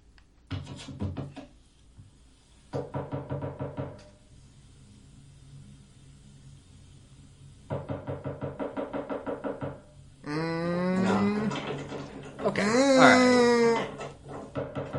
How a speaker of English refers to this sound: So we've just got a video of this person's front door, it looks like, and there is a knocking at it, and they are turning the knob. Yeah, they're violently. Yeah, they are trying to get in.